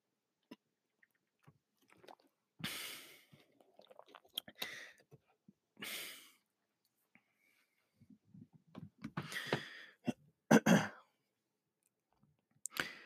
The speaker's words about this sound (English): I'm going to take a quick drink of water and then we're going to get started.